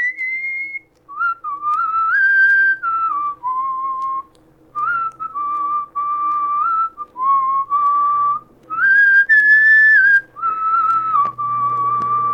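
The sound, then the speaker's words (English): A woman whistles a slow, lilting folk melody alone, the clear, steady tone sliding between sustained notes in phrases with short breaths between them, fairly loud. “You're listening to … whistling the tune On Yonder Green Mountain”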